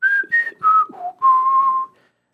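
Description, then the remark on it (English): A short whistled tune of five clear notes, rising slightly and then stepping down, with the last, lowest note held out longest before it fades. “How's that go?”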